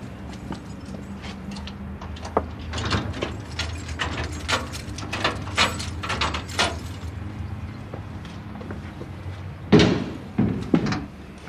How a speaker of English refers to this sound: Now we're approaching the book house. The book house is where the memorial books are kept. I just open the door now. If I can find the right key. There's so many keys.